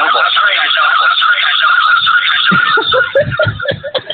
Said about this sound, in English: Reverb, bit of … vibes going on here. Oh yeah, no, I'm hearing you double.